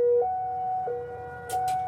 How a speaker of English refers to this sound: Actually, every month we have a Cold War era siren that blares.